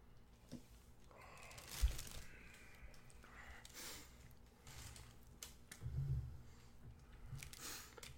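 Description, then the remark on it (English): Quiet sipping of Tex-Hex IPA beer: a few soft slurps and swallows spread out over several seconds, with breathy exhales and small mouth noises in between, and no talking. “Let's sip some of this Tex-Hex.”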